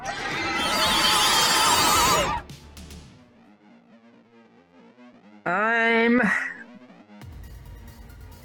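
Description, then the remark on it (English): A voice imitates the shriek of a cartoonish Watcher Spirit, its mouth distended: a loud, harsh burst of screaming, then a lower warbling wail, then a second high, wavering scream that rises and cracks before fading. “It points a ghostly finger at you, and its mouth distends, and it just starts going.”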